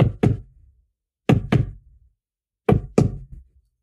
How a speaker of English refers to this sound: Then it came again. The distinct sound of someone knocking on a wooden door.